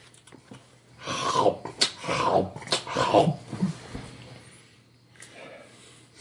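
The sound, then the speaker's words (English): A dog growls in several rough, rising bursts while chewing and tearing at a paper contract, then the noise fades to quieter rustling near the end. “Does he always eat the contracts?”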